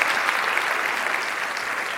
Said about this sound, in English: They are here in the house this evening. I would love to give them a round of applause and recognition for this.